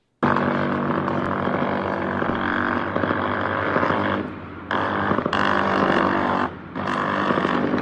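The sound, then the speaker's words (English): A military helicopter fires streams of 50 caliber tracer rounds into cartel headquarters, producing a loud, continuous buzzing roar that runs for several seconds, broken by two brief pauses, with no voices. “That is a military helicopter raining 50 caliber tracer rounds.”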